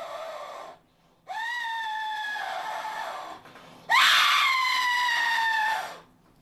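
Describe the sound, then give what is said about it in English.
A loud, shrill whistle, called the Lee whistle, gives two long scream-like blasts with a short pause between them. The second blast is louder and harsher, and each one slides slightly in pitch. “Here we have the Lee whistle.”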